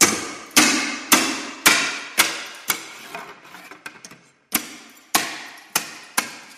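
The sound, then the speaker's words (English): A knife makes the final two cuts into slate after measuring, in sharp, bright strikes, about twice a second, each ringing briefly. Midway the strikes give way to lighter taps and a short silence before resuming. No voices. “And after you've done your measurements, you do your final two cuts with the knife.”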